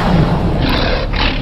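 A lion in a lion's den gives a loud, deep, gravelly roar that rumbles steadily through the whole short moment, heavy with low-end boom, and no voices are heard.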